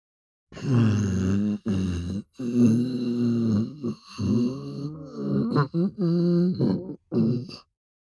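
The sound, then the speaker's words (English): A hungry stomach growls in a run of long, low, groaning rumbles, rising and falling in pitch over several bursts with short gaps between them, loud and with no talking. “Hungry stomach.”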